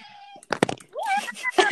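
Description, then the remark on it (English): A couple of sharp knocks, then a short, rising cat meow, followed by further squeaky, tonal vocal sounds. “Is that your cat?”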